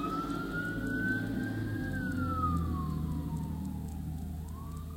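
A fire truck siren wails as the truck comes down a street on its way to a big fire, its single long tone rising and then sliding lower as it passes, over a loud, steady rumble of engines and traffic while vehicles pull over.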